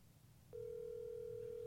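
After a brief quiet moment, the steady electronic ringing tone of a phone call to Bob Saget starts and holds unbroken to the end, clear and fairly loud, with no voices.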